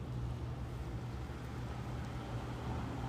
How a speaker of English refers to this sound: Got that motorcycle off in the distance. Can you hear that motorcycle off in the distance?